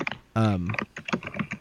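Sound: loud computer keyboard typing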